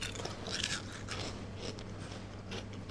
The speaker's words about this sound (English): A deep golden thing on the top, and all of a sudden when you bite into it, you've got the smooth and then you've got the crispiness. And it's just like, it's like being in Disneyland. I have a little crunch here, will I?